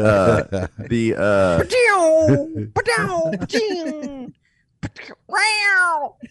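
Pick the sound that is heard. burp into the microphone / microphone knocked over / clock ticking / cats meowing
cats meowing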